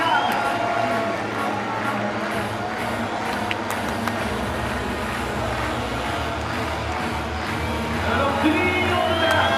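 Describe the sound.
A large crowd cheers and roars steadily at a track cycling race on a banked track, with three laps to go and a home win in sight, a dense, loud wash of voices that holds for the whole stretch and swells slightly toward the end.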